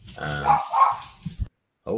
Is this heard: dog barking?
yes